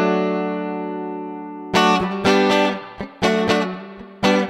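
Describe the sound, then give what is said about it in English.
Clean electric guitar played directly into a mixing desk with a touch of reverb: one long ringing chord fades, then a series of sharp strummed chords with short gaps between them, fairly loud, with no voices. “Your guitar is going straight into the desk. It is. I've chucked a tiny bit of reverb on it just so it doesn't sound too sterile.”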